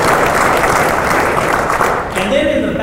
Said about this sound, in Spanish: Así que si pueden reconocer a todas esas personas, con un aplauso muy fuerte, por favor.